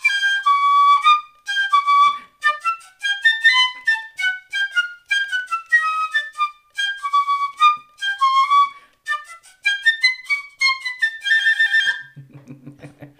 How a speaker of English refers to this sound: Really pretty sound to it. But. Yeah, I like the sound of a piccolo.